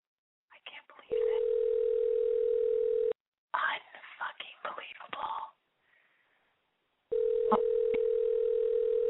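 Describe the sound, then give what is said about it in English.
A phone line rings out while waiting for someone to answer: two long, steady ringback tones separated by a pause, with muffled, telephone-thin voices murmuring briefly in the gap. “Pick up the goddamn phone.”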